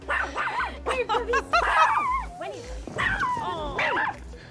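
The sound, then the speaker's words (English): Small dogs yap and yip excitedly at a home in 2003, trying to run out a camera crew: a rapid, overlapping flurry of high-pitched barks mixed with whiny, rising yelps that continues without pause. “We've just uncovered some footage from a 2003 visit to your home when your ferocious dogs tried to run out our camera crew.”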